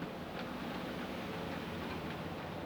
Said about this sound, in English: Can you hear the rain? It's like, it's wild out there.